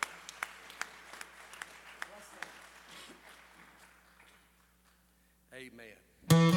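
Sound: audience hand clapping applause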